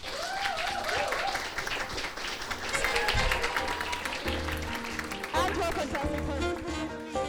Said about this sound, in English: Ladies and gentlemen, and aliens, please give a warm round of applause for Leslie Whisper.